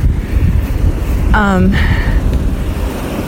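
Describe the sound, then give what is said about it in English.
Flowing river water rushes steadily throughout, a dense, continuous wash, with a short high-pitched tonal call cutting through briefly midway. “Let's go over the river. Water's moving.”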